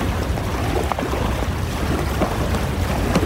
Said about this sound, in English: I think that's the tidal surge. Oh, we're in deep water. It shouldn't break this far out. Just, here, unhook the kayaks and... It's coming. Keep your bow pointed straight at the wave. Don't get turned broadside.